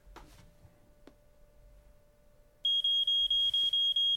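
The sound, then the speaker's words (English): A smoke alarm blares a loud, rapid series of piercing high-pitched beeps after a brief quiet stretch with a couple of faint clicks; no one speaks. “Sponsored by Smoke Alarms.”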